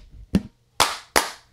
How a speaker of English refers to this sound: Sorry, y'all. Y'all hear the clapping? You usually don't, right? Me? I don't normally clap. Oh. I just be guessing. So what'd you clap for? To sync it back up because it stopped. Oh. The recording of the camera stopped.